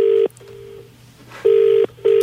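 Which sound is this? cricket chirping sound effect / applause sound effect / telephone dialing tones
telephone dialing tones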